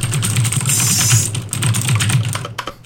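Rapid, steady clatter of keys on a brand new mechanical keyboard, fairly loud, a dense stream of sharp clicks with a brief pause near the end and no one speaking.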